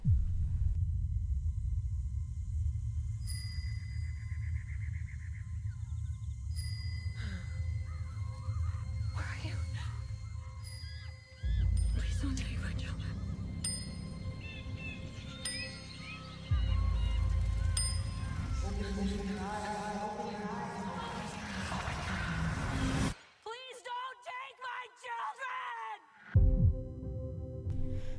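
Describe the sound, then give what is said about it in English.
A trailer for the movie Bird Box, starring Sandra Bullock and John Malkovich, plays: deep rumbling drones, sharp chime-like hits and tense tonal music build with intermittent voices, then a sudden drop to near silence before a final loud hit. “That was the preview for the new movie, Bird Box, starring Miss Congeniality.”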